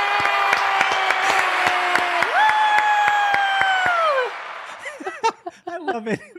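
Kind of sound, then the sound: crowd, applause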